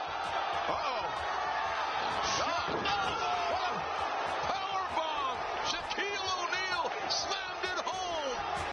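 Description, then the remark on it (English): Shaquille O'Neal powerbombs Cody Rhodes onto the ring mat in an All Elite Wrestling match, with heavy thuds and slams ringing out over a loud, continuous roar of a cheering, shouting crowd. “Shaq made his highly anticipated appearance in the AWE, which is the All Elite Wrestling League, and started off well, powerbombing Cody Rhodes.”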